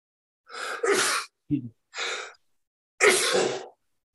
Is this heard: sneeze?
yes